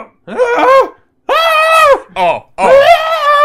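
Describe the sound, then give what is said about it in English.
A voice imitates a muffled scream from inside a suit being hit: four strained, high-pitched wailing screams in quick succession, loud, the longer ones sustained and wavering. “And as you start to do this, you start to hear this muffled scream coming from inside.”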